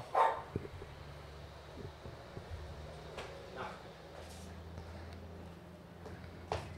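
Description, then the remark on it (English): A dog lets out a sharp, loud bark at the very start, followed by a low steady hum and a few faint clicks and rustles. “Hey, fucking dog. Enough.”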